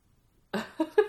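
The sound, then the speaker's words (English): After a moment of silence, a cat lets out three short vocalizations in quick succession, brief chirpy meows that grow slightly louder toward the end. “Hello, kitty cat.”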